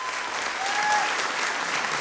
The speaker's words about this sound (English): An audience cheering can be heard, and everybody looks around confusedly again.